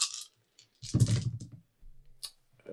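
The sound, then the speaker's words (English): Nine dice rattle and clatter across a hard surface in a few quick bursts of clicking, moderately loud, with no voices, rolled in a tabletop game for an NPC's attack. “Nine dice roll.”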